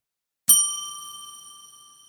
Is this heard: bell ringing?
yes